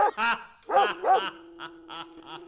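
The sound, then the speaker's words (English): A dog barks in a quick run of loud, sharp yaps, then lets out a few softer barks over a faint steady hum. “You should have seen the look on your face when he started barking.”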